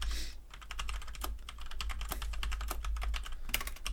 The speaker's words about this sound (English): Boom. Typing it in. All right, here we go.